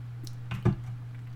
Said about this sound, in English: Excuse me while I sip this water. I am very thirsty. No, I am parched.